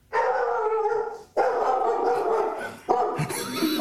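A dog barks in three long, drawn-out bursts back to back, each loud and almost howling in tone, with no talking; she barks because she thought someone else had come into the house when a voice was imitated.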